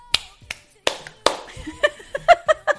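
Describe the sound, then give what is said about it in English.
Several sharp hand claps in a steady rhythm, followed by short chanted vocal syllables that keep the same beat, a quick clapping chant of "Stardom Sit'em" for a show segment. “loves a good chant, a good clapping chant, that's for sure.”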